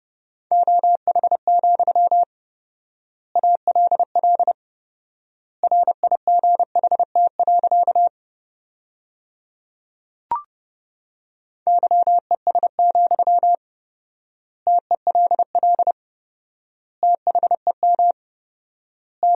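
Morse code tones sent at 30 words per minute with four-times word spacing, spelling sentences made from the top 500 words: rapid bursts of a steady mid-pitched beep keyed into word groups, separated by long silent gaps, with a single soft click midway and no voices.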